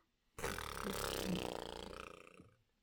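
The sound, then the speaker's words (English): A voice blows a long, buzzing imitation of a fart, lasting about two seconds. It starts suddenly, holds steady, then gradually tapers off. Fairly loud, with no talking. “You got so excited, and it was just for long just farts. Just about farts.”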